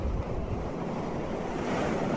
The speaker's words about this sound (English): This is YouTube video titled The Most Relaxing Waves Ever, Playa de Piticabo Ocean Sounds to Sleep, Study, and Chill.